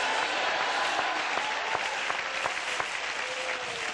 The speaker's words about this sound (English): Everybody that believes that, clap your hand and holler hallelujah.